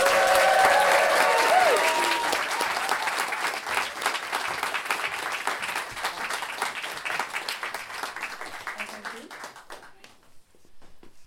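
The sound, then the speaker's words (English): A large audience at a storytelling event claps loudly and steadily for the first storyteller, a dense wash of many hands with a few cheers mixed in early, gradually thinning out and fading to silence after about ten seconds. “All right, then, it's really scary being the first storyteller, so can we have a big round of applause?”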